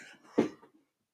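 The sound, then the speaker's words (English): A single sharp sneeze bursts out, a quick explosive blast that fades into a breathy tail within about half a second, with no talking around it. “Oh, I'm sorry, sneezed.”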